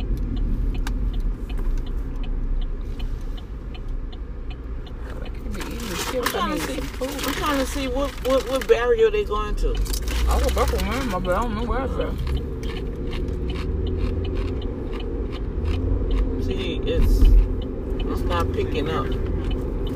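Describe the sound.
Steady low rumble of car traffic throughout, with a louder passing surge of engine and road noise in the middle and faint, muffled voices mixed in.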